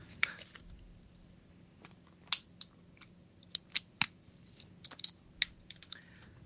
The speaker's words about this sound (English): Where's my water? Let me take a sip first.